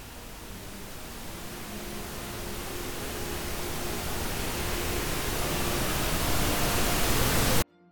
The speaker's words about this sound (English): You should like edit in like a, you say that and then it sort of like fades into like static. Like it's really, really aggressive.